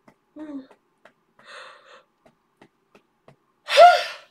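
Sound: yawning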